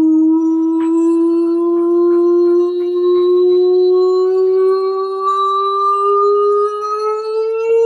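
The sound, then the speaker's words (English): A single voice imitates a siren, holding one loud, unbroken tone for about eight seconds while the pitch glides slowly and steadily upward. No other talking is heard. “That is the nonsense siren.”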